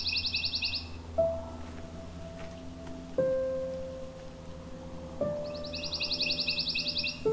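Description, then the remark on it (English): A songbird sings a soft, rapid musical trill of evenly repeated notes that fades in and out, once at the start and again near the end, over sustained low background tones, in a pine woodlot near Cambridge, Ontario, during the bird breeding season. “but quite easy to hear with their musical trill, easily confused with the dark-eyed junco, swamp sparrow, or chipping sparrow.”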